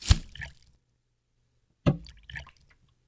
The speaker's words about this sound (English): Oh, you over there. Feel free to continue pouring your water.